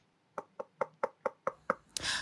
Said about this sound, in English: I suppose I can knock on this particular door shape.